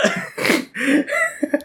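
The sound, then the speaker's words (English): A sneeze, broken into several rough, breathy bursts over under two seconds, ending in two short sharp puffs. It is moderately loud, with no talking. “God bless you, please.”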